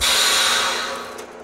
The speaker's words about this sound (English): is vacuum sealing finished cakes so they can be shipped to customers.